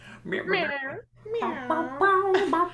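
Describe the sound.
A person's voice imitates a cat, giving a rolling trill and then a drawn-out, sliding meow. Two fairly loud bursts are separated by a brief pause.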